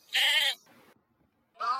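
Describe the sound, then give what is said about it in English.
A sheep bleats loudly, a wavering half-second cry, then after a short quiet a second bleat starts just as the sound ends. No one speaks. “I said beep, beep, I'm a sheep.”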